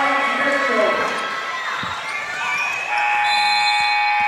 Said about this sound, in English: Buzzer sounds to end the first half.